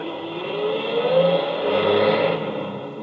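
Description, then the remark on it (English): A truck engine revs up loudly, its pitch climbing and holding as the truck, ordered away, pulls off, a steady rumble that eases slightly at the end, with no voices. “Get your truck out of here at once!”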